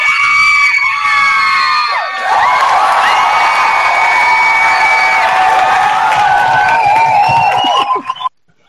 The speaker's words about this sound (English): And the crowd goes wild.